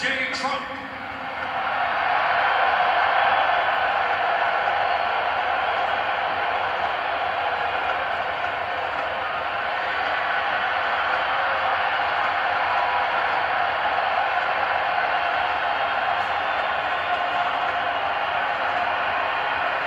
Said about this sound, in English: And people are trying to say, well, people were booing, but it doesn't sound like it to me. It sounds like the crowd went wild. Here's just a little clip. You can judge for yourself.